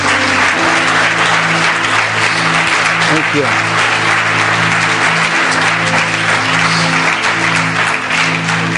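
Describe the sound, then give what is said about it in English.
A church audience claps loudly and steadily for two women who work with the volunteers, a dense, continuous wash of applause over a low sustained musical hum, while a voice briefly offers thanks partway through. “Will you just clap for them?”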